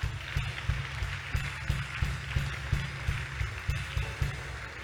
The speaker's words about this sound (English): Clap for God.